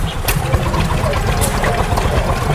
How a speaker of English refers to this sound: Threshing machine. So that is it. It's a sort of insight into what the sound of farms would have been like once upon a time.